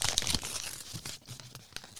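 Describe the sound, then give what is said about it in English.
Paper tears in a series of quick, scratchy rips, an envelope being pulled open with crinkling between bursts and short pauses. “I love the sound of ripping paper.”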